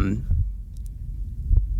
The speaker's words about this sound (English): And it's just the sound of his friend's heartbeat for 30 minutes.